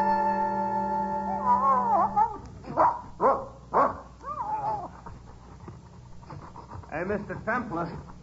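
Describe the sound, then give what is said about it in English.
A dog gives a few short, sharp barks in quick succession after a sustained tone, followed by softer whimpering yips amid background chatter. “We're going to copy the dog and dig.”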